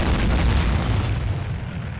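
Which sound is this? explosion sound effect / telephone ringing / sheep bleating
explosion sound effect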